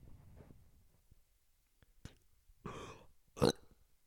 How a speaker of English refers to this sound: Oh, look at that. That's little burp response. That he made. Surprising. I mean, he's a baby. That's what he does. I mean, he's a toddler. I guess he's like a year and a half.